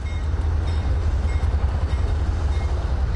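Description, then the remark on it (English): Train cars rumble steadily through a rail yard in Commerce, a continuous heavy low-pitched drone with a grinding metallic texture, constant throughout, with no voices. “stands at a rail yard fence in Commerce.”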